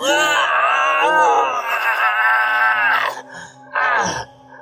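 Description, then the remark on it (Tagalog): A loud, anguished scream from a possessed person as a priest suddenly puts a rosary on them holds and wavers for about three seconds, then a brief pause leads into a shorter, strained cry that fades into a groan. No speech, just the raw voice. “Malakas itong napasigaw, Sir Kira, noong bigla itong suotan ng rosaryo ng pare. Napakalakas ng sigaw niya.”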